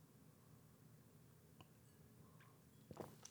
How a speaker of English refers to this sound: You hear my gulp that time? I did. I heard it.